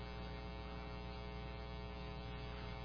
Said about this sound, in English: Is that air conditioning or heat?